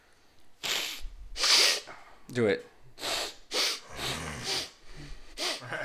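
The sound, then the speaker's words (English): A person with a cold makes congested nasal snuffling: a run of about eight short, breathy sniffs and snorts in an uneven rhythm, with a brief spoken phrase in between. “You can friggin' hear me snuffling over here.”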